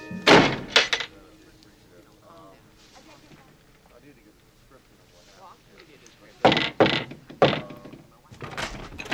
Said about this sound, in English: I like that music there when she opens the door again.